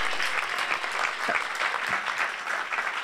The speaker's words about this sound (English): All right, just give my wife a big hand clap. Can you do that?